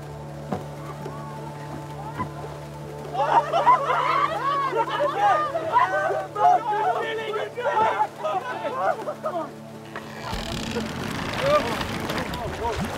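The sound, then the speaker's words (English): A sinking boat low in churning water, with a steady hum underneath, a burst of agitated voices, then heavy sloshing and splashing taking over near the end. “The boat, it's still sinking!”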